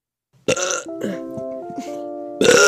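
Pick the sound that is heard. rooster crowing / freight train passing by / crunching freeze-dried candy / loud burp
loud burp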